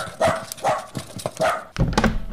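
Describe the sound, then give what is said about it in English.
A dog barks several times in quick, uneven bursts, fairly loud, then a dull thump and scuffling rustle follow as the barking stops, as a watch is thrown like a stick for the dog to fetch. “I shall distract him by throwing my watch as if it were a stick. Fetch!”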